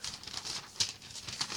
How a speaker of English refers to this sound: Look, see that there, you can hear the paper, look. Yeah. And that's blank. It is pretty much blank.